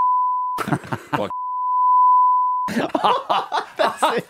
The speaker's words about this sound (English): That's it. He thought he was done with the beeps.